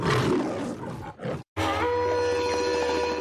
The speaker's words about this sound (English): I guess I don't need the MGM lion on there, but you know, so.